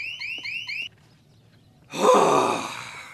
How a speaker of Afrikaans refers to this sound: Nou nog die alarm ook.